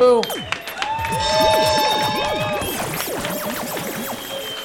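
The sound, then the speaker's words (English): An audience at a comedy show in a bar claps and cheers steadily, with whoops, shouts and whistles rising and falling over a continuous wash of crowd noise throughout. “Round of applause for these two.”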